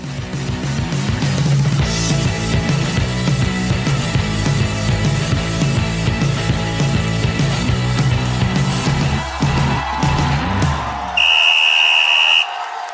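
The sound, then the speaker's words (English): After a stretch of dense crowd and music-like noise, a single loud, steady whistle blast rings out at a high pitch and holds for about a second before cutting off. “You heard the whistle.”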